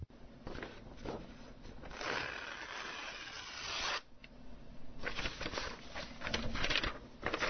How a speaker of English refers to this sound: Well, yes, caller, let us open this envelope.